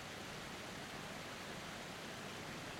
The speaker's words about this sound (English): But as you are reflecting on the beauty and the majesty of this waterfall, you hear the Father invite you to step under the waterfall.